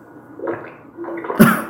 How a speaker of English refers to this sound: Oh, no. They're drinking. Somebody's drinking a drink. That's what it is. Either that or it's like a frog hopping in water.